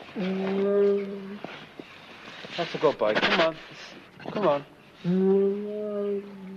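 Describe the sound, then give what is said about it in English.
A male Siberian tiger waiting to go in to be fed gives two long, low moaning calls, one at the start and one near the end, loud, with a man talking briefly between them. “That's Alma now, and he's waiting for to go in for to be fed.”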